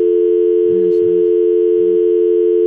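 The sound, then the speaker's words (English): A steady telephone dial tone hums continuously and loudly over a phone line, broken only by a few faint, brief low clicks of line noise, with no one speaking. “I always mess up this phone. That line sounds terrible.”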